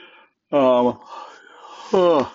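A voiced yawn: a loud drawn-out groan, a softer breathy stretch, then a second strong burst whose pitch slides downward. No words are spoken.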